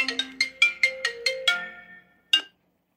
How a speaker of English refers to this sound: hold on, it's my phone.